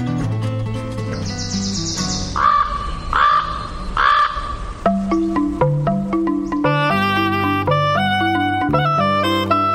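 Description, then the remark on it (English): Three harsh, rasping crow caws ring out in quick succession over a soft musical backdrop, then give way to a bright, plucked melody that carries on alone. “Crows and ravens are birds of a feather.”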